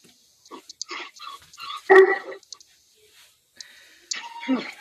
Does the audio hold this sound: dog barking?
yes